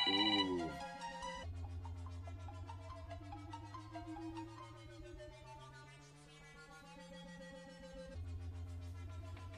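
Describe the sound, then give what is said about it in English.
A phone ringtone for an incoming call flagged as a spam risk plays a bright, looping electronic melody with steady rhythmic notes, fairly loud, continuing for several seconds with no one speaking over it. “It's a spam risk, random lady. Well, answer it because of the contest I've been entering.”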